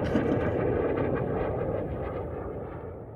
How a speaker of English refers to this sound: It's the largest fleet of A-10 Warthogs in the country. They're great airplanes, I love them, but not for recording podcasts. I fucking love planes. You hear that F-16, like, just going full throttle?